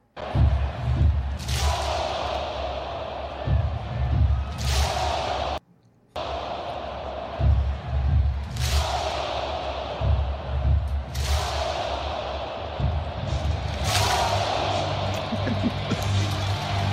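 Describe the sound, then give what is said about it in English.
A raucous stadium crowd at the Colts–Vikings football game roars loudly and continuously, doing the wave and throwing programs in the air, swelling into sharper cheering surges every few seconds over low thumping, with a brief cut to silence partway through. “That was audio of the raucous crowd.”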